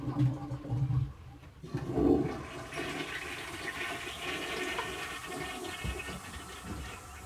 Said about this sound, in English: He's coming in now so that he can get the toilet flushed, because he has to pour quite a big bucket of water. Big pail of water in the toilet to get it to flush.